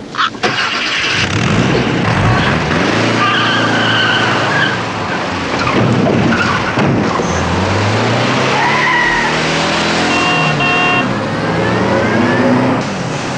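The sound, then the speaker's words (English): A car roars away as a woman drives off in a car she has taken, tires screeching and skidding, the engine revving loudly for several seconds, with rising and falling pitch sweeps of squealing rubber throughout. “That woman! She took my car!”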